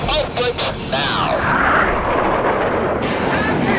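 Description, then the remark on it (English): Loud aircraft engines roar steadily as they run up to full power before takeoff, a dense rumble that swells and holds, with brief muffled voice-like sounds near the start. “Clear for takeoff. Check your parking brake off. Check your trim set. Check your nozzle steering on maneuver. Diamond half squirrel cage. Left turnout. Let's run them up.”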